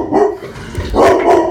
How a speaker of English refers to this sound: I'm so sorry about that. My dog is freaking out. He thinks there's a war going on, obviously. He's upset. So, as I was saying before, my dog is still barking.